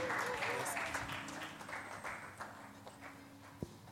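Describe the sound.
An audience claps hands in a steady, dense wash of applause lasting several seconds, with murmuring voices mixed in and one sharper knock near the end.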